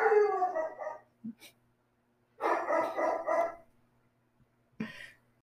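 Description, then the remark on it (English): A dog barks and yowls: a drawn-out, whining howl at first, a noisy run of yelping barks in the middle, and single sharp barks between, with silence in the gaps. “Okay, so my dog is now calm and collected.”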